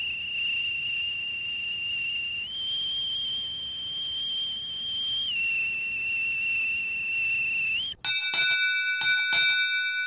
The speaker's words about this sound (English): Liberty call, liberty call, liberty call for all hands. All right, there's the whistle,